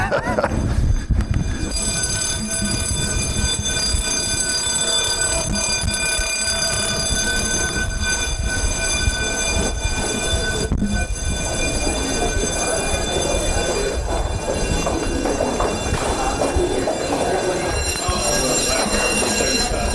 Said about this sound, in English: Well, by way of a flourish here, just as we're coming to the end of the interview, the fire alarms have gone off here at Guildhall, so we will complete in grand fashion on the sidewalk outside the building.